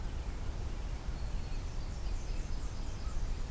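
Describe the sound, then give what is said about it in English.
Thin, high-pitched lisping calls of cedar waxwings repeat faintly in a loose series overhead, nearly buried in steady low outdoor rumble. “Cedar waxwings somewhere going overhead, I guess.”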